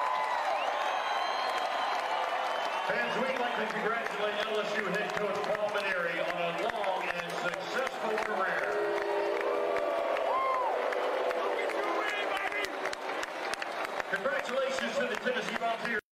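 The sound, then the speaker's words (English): A large stadium crowd of Tennessee Vols baseball fans boos LSU coach Paul Maneri loudly and steadily after the PA announcer congratulates him on his career. Long low jeers mix with scattered clapping and a few shouts, filling the whole stretch with dense, continuous noise. “So there were boos. I don't think it, because you heard clapping, but there were a lot of boos there.”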